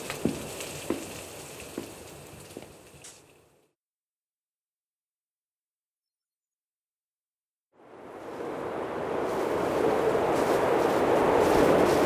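A howling storm: crackling noise with a few sharp pops, a few seconds of silence, then a dense, loud roar of wind and rain that swells and holds steady, with no voices.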